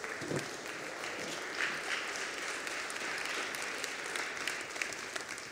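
A church audience claps steadily as a clap offering to the Lord during a service, producing a dense, continuous wash of many overlapping hand claps at fairly even loudness throughout, with no talking.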